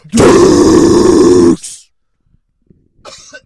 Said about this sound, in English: Man, coughing already. Hacking up some Hellmans. It was a high cough episode last time.